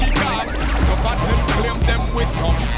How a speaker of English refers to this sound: My goodness, the boat going in already.